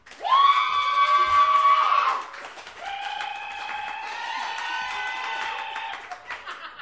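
A crowd claps and cheers, with loud, sustained whooping voices in two long swells, the first louder, over crackling applause that thins out at the end.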